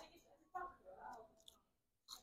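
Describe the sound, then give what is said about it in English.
Quiet crunching of someone biting into crispy fried pork intestine: a few sharp crackly bursts separated by softer chewing, with faint murmured voices in the background. “Oh, it is crispy. I heard that crunch.”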